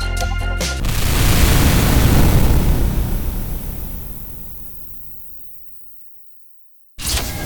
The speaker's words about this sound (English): It would appear that the Starship Mudskipper just crashed into the very starship we were on our way to assist. I suspect many casualties and untold damage.